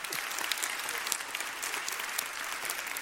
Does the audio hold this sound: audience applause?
yes